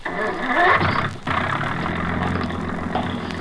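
A car engine cranks and catches with a loud rising roar, then settles into a steady, rumbling idle, with no one speaking.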